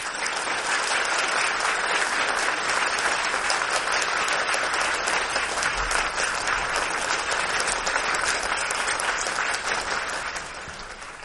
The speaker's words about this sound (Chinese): 那我想就是现在哈、啊，请全体起立，欢迎堪布上台开始。啊，请大家鼓掌。